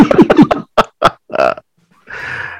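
A person snoring: a run of short, throaty grunting snorts followed by a longer rattling, raspy breath, fairly loud with brief silent gaps between them and no talking.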